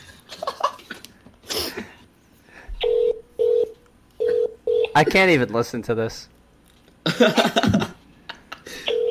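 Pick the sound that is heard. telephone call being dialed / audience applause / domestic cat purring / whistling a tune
telephone call being dialed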